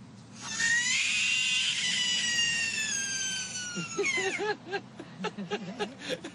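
A frog's shrill distress scream, one sustained wavering wail lasting about three seconds that bends downward at the end, followed by a voice talking quietly underneath.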